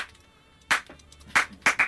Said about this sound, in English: You know the sophisticated ladies man lighting where you clap your hands? So bear with me here. Just imagine lights going on and off.